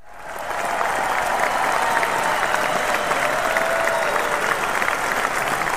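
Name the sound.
round of applause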